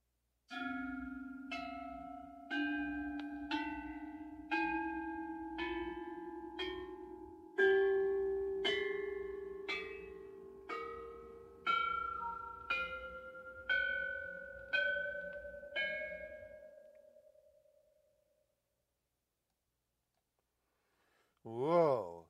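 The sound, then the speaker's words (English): Bronze bell chimes struck one at a time, roughly once a second, climbing steadily in pitch over about fourteen notes, each ringing on before the last tone fades; a brief voice follows. “Now let's hear the bell chimes using bronze bells.”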